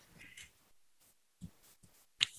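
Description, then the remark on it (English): A single sharp, loud sneeze bursts out at the end, hissy and bright, after a few softer breathy rustles and brief thumps; no one is talking. “Bless you.”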